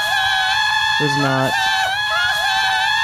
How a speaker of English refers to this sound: That's probably hard to hear. It's probably hard to hear over that, you know, with all the kids That's screaming. That's pretty much what was happening.